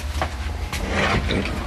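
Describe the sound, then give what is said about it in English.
A door in a little theater opening into the main hallway and theater: a couple of short clunks and a brief swishing scrape, with a steady low rumble and faint murmuring underneath. “So we'll open the door into the main hallway and theater.”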